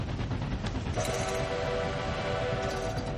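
A steam train whistle, sounded by pulling its rope, gives one long steady blast of about two seconds, a chord of sustained tones over a constant rumbling hiss of the engine.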